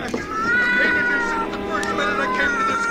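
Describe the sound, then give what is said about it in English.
A cat named Lady Susie yowls and wails continuously in drawn-out, rising and falling cries, loud, sounding distressed as it writhes and scratches while a man tries to push it into a furnace in a cellar. “George, drop that cat this instant.”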